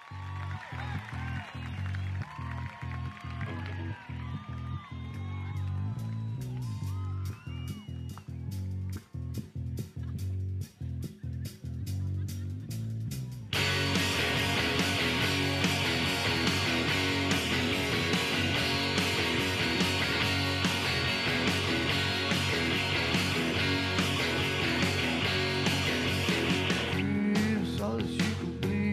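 A rock song opens with a sparse, steady beat under squealing, chirping tones, then about halfway through the full band crashes in loud and dense, driving on to the end.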